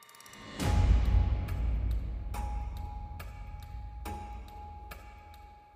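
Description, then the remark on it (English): A large clock ticks steadily at roughly two sharp clicks per second over a low rumbling background hum, with a brief clunk and faint ringing tone near the start. “Look at my big clock.”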